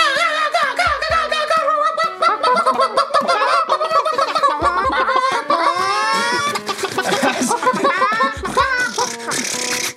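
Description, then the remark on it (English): A loud, crowded chorus of chickens filling a room, clucking and squawking, overlapping without pause, with a few low thuds breaking through. “the room is full of chickens.”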